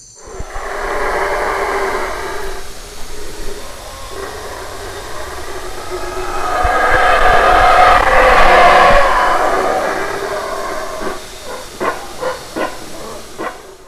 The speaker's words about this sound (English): It's not a dinosaur or a bear. It's a howler monkey, the loudest primate in the world.